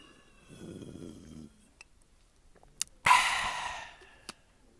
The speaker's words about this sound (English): Before we continue, I'm just going to get a quick sip of some H2O.